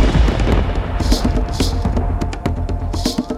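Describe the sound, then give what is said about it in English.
Loud thunder with lightning in the night sky rumbles continuously, a deep rolling roar punctuated by a few sharp, crackling bursts that flare up and fade over a few seconds. “thunder and lightning in the night sky.”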